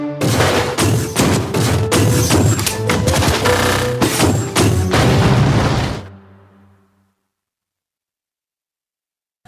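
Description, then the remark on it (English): Loud, dense automatic gunfire from a movie crackles in rapid bursts, mixed with booming explosions, for about six seconds before cutting off into a brief fading rumble and then silence. “There's nothing like explosions and automatic weapons that get me thinking right.”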